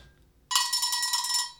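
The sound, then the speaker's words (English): A telephone rings in one sustained, bright, trilling burst that starts abruptly after a brief quiet moment and holds steady at a strong level for about a second. “Ring, ring. Ring, ring. Ring, ring.”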